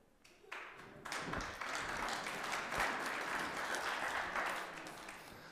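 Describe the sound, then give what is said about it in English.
Applause from a church audience during a sermon starts with a few scattered claps, then swells after a second into steady, dense clapping from the crowd that holds at an even level for several seconds. “I didn't have an applause line in my notes.”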